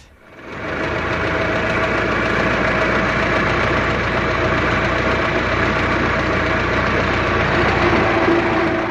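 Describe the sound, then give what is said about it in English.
An old Ford Model T car engine runs steadily, rising quickly to a loud, rough, knocking idle that chugs on evenly throughout, with no voices. “They're well known now to everybody as the old Model T, which was the father of all the motor cars, I think.”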